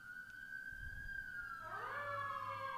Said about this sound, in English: Oh, there's sirens.